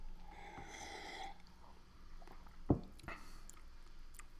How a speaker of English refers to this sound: Let me take another sip.